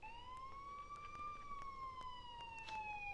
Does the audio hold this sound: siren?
yes